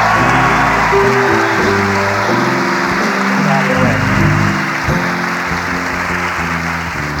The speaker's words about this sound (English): You think this applause is for me? It is not for me, ladies and gentlemen. It's for Willie Morris, ladies and gentlemen, joining us right now.